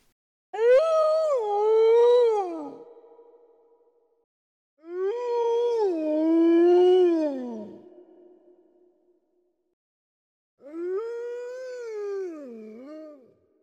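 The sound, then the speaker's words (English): A wolf howls three times, each long, wavering call rising and falling in pitch before trailing off, with brief silences between. The howls are fairly loud, with no other sounds. “Yeah, it's a wolf, all right.”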